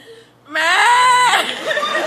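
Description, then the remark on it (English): A person imitates a screaming cow with one loud, high, strained vocal wail that holds for nearly a second, then breaks into a rough, fading rasp. “And this is the sound of a screaming cow.”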